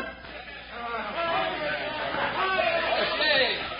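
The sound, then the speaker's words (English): A crowd of men shouting and cheering together as they greet news about an election campaign, a loud, continuous jumble of raised voices with no clear words, swelling slightly toward the end. “Across the street, … and his friends greeted Bill's news with high shouts and higher hopes.”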